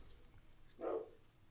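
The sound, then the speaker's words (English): A single short, muffled bark from the speaker's excited dogs rings out against a low background hum, with no one talking. “Now my dogs are actually going crazy.”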